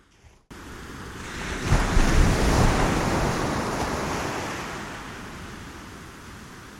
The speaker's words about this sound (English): In this episode of Microdose Nature, we're going swimming underneath ocean waves to feel all of the sensations. Why do this? I find that swimming in natural bodies of water, but especially in the waves, totally enlivens my whole being.